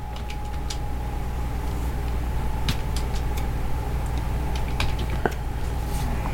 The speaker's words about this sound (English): He's clicking. He's clicking. What? I'm clicking.